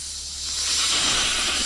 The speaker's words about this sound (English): They're not helping me here in the production department. Like, the executive research desk is not helping me with the sounds of snakes.